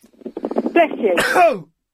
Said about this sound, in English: Oh, I'm going to sneeze.